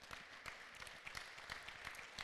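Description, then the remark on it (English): A church audience claps together in a sustained burst of applause during a sermon, dense overlapping hand claps at moderate volume. “You can clap.”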